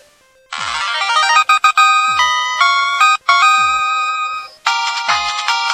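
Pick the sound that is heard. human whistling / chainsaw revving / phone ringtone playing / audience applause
phone ringtone playing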